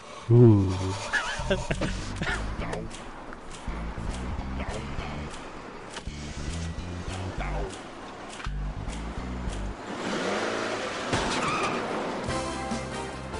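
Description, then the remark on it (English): The engine of a used car that can only drive forward rumbles and revs as the vehicle drives, with tires skidding and squealing in bursts, and indistinct voices underneath. “You tried to cheat the system and bought a used car, so you can only drive forward.”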